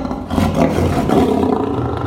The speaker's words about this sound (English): And that was a lion.